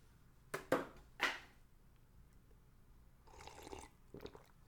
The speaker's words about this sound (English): Pardon moi, folks. Sip of water, folks. Don't mind me, folks.